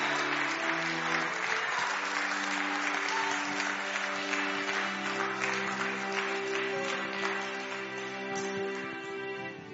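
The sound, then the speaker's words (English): An audience applauds and cheers for a woman who has walked forward, a dense wash of clapping over sustained organ-like chords for about ten seconds, easing slightly toward the end. “As we cheer for that sister, it reminds me that you have a neighbor.”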